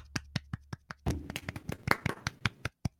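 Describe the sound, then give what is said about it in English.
A brief round of sparse audience clapping for capitalism from just a few hands: sharp, uneven claps that briefly overlap in the middle, then thin out to a couple of final claps. No one speaks. “Can we get a small applause for capitalism?”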